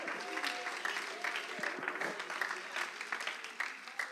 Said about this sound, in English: Oh, come on, lift up your voices a little bit louder and clap your hands a little bit longer for what Jesus came to do.